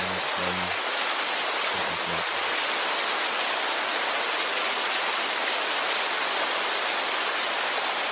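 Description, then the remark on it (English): Steady, dense rain pours down in a constant hiss, filling the whole clip at an even, moderately loud level, with a couple of faint low tonal bumps early on and no voices. “Visualize that water coming down.”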